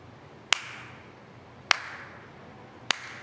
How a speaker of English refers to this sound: They're looking for applause.